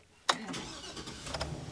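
A big van, loaned by Beaver Creek Christian Church for a grocery store run from Old North Dayton, cranks and catches with a sudden loud burst, then settles into a steady, rumbling idle with a low throbbing drone underneath.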